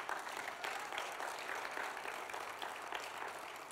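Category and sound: human body sound, hands clapping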